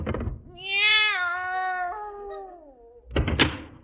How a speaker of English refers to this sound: Meow. You were right, Miss Brooks. There's nothing in there but a cat.